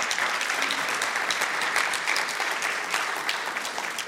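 A room full of people claps steadily for several seconds to thank people who are not present, a dense, even wash of applause that holds at a strong level without breaking off.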